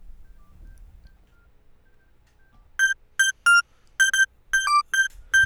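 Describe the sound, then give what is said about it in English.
After a few quiet seconds, a cell phone rings with a melody of bright electronic beeps: about seven short tones in a quick, uneven rhythm, loud, with no talking. “That's just my cell phone going off.”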